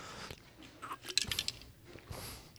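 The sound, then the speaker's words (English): Wet slurping by people right into the microphones: a few quick smacking, sucking bursts clustered in the middle, loud and intimate, with no one talking. “We slurped into the mics multiple times.”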